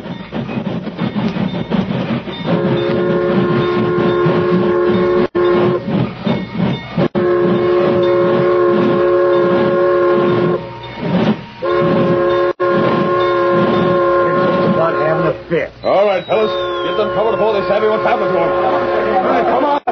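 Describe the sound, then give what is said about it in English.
A train rumbles, sounding several long, loud whistle blasts in steady succession. A high squeal rises near the end as it slows and comes to a stop. “Keep out of sight, you fellas, till the train stops.”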